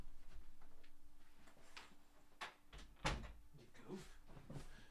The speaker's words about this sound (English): But first, I got to go shut my door.